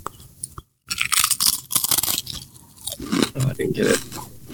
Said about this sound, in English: He's just crunching away more than I ever know right now.